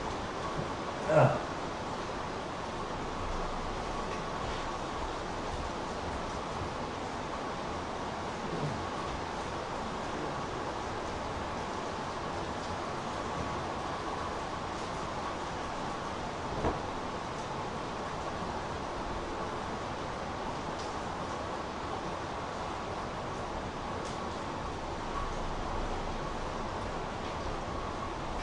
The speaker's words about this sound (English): The rain is a bit too strong.